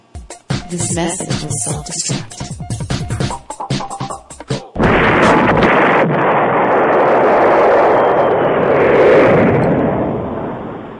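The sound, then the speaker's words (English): After a few seconds of voice-like sound, a loud explosion from a played clip bursts in and rolls on as a thick, roaring rumble that slowly fades over the next several seconds. “And then there's an explosion.”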